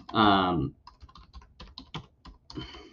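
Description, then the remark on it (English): Computer keyboard typing, a quick run of irregular key clicks lasting a couple of seconds, preceded by a short voiced hum or tone at the very start. “I'm typing something in real quick.”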